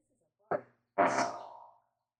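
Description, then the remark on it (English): A fart sound effect played on a Google voice assistant: a short blurt, then a longer, raspy, sputtering one that trails off after under a second. No one talks over it. “Okay, Google, play farting noises.”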